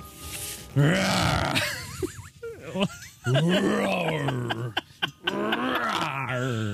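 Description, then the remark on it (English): A man's voice imitates a growling roar in several long, throaty bursts with short pauses between them, loud, with no ordinary talk. “Do you like my roaring?”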